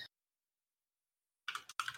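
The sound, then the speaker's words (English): A quick flurry of typing on a computer keyboard, soft clattering keystrokes in short bursts after a near-silent pause, with no one talking, while looking for the obscure Finnish retro shooter White Hell. “I'm like literally just as you said that I started typing looking for it.”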